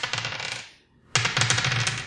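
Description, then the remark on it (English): Dice are rolled for a Defy Danger plus Dexterity roll, clattering and rattling in two bursts of rapid, bright clicking, separated by a brief pause of near silence; no voices are heard. “Okay, roll me a Defy Danger plus Dexterity.”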